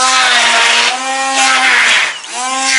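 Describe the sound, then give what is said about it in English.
A hand blender mashes food with a steady buzzing motor whine and gritty churning noise, briefly dipping in pitch near the end before revving back up. “So I have to improvise. I'm using a hand blender and it totally works.”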